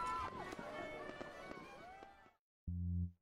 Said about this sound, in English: And he opens the door. As you kind of like enter in, the sound of the fireworks fade out.